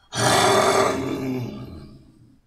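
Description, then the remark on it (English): A single loud, rough growl bursts in suddenly, raspy and throaty with deep rumbling undertones, then slowly trails off over about two seconds. No one speaks. “I mean, you can growl all you want.”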